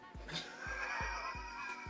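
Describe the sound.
A horse whinnies in a long, shaky neigh with a fluttering, pulsing rhythm underneath, steady in loudness for about two seconds, with no talking over it.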